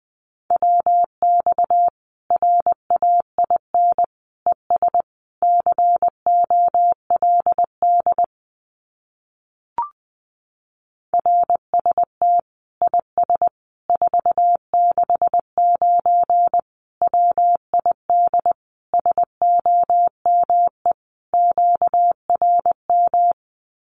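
A single steady mid-pitched tone keyed in rapid dots and dashes: Morse code sent at about 20 words per minute, sending common amateur radio QSO phrases. Two long runs are split by a short pause with a faint click.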